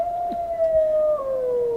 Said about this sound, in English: It's like, move over, scarecrows. We've got these giant robot wolves. Those things do look hella scary. And they're scary looking. They got these glowing red eyes, and its head is swiveling around. It's got loudspeakers under it for howls.